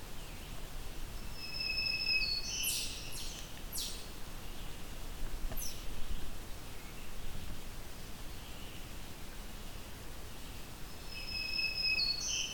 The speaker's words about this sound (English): Oh, the second black-throated green warbler.